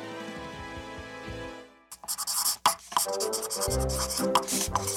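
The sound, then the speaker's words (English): After a couple of seconds of soft tonal music, a pencil scribbles on a desk in quick, rough, scratchy strokes. The scratching is fairly loud and continues to the end. “And yet you continue to write all over my stage.”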